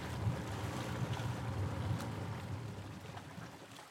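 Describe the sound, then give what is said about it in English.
A boat with a small cabin chugs steadily through water as it nears the shore, its low engine rumble mixed with splashing waves and gusts of wind buffeting the microphone, fairly loud, with no voices. “Slow down. We're nearing the shore. I'm going to ditch the boat.”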